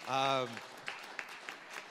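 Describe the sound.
A brief voiced sound opens, then an audience's scattered, sparse applause follows at an in-person worship service at Midway: a handful of faint claps at uneven intervals rather than a full ovation.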